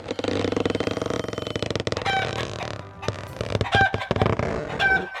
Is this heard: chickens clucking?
yes